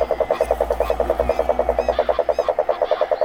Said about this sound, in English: Frogs lined up getting mosquitoes around the edge of the thing.